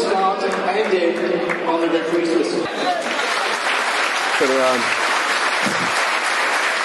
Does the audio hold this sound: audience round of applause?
yes